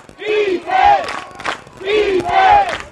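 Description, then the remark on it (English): The Wayne Blue Devils' football crowd chants "defense" in unison during a game against Adams Central, the loud two-part call rising and falling twice in a steady rhythm, with massed voices ringing through each phrase. “And you're hearing the chants of defense here from the Wayne crowd.”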